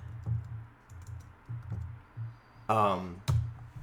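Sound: keyboard typing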